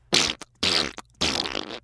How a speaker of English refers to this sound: Saying that, Gorilla got up and pointed his chubby bottom toward Zook and Stinky Steven. A loud, long, trumpeting fart sprayed onto their faces.